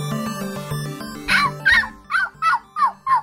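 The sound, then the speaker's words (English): A tech reporter imitates a dog barking: six short, yappy woofs in a steady rhythm, fairly loud, following a brief stretch of sustained musical tones. “Mama, are you finally agreeing to let me have a dog? Not exactly. That's one of our very animated and talented tech reporters getting ready to bring us a super cool story about pets and artificial intelligence.”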